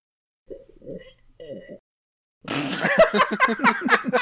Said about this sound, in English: That was my favourite slurping noise. Now swallow. Don't rush him.